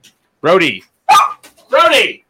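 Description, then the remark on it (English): A dog barks three times in quick succession, loud, each bark sharp with a slightly strained, yelping edge and brief pauses between them. “Sorry, the dog's freaking out.”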